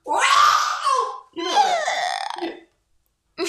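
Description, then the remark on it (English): A voice attempts the Wilhelm scream: two loud, strained, warbling cries of about a second each, with a short gap between them and a third starting at the end. “Cue the Wilhelm scream.”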